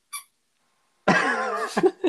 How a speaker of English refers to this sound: Dog's got a chew toy there. Yeah. He's got a squeaky ball. He never does this and chooses now to do it.